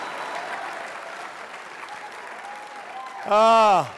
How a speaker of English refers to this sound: Haven't had a round of applause like that since my honeymoon night, so I appreciate that.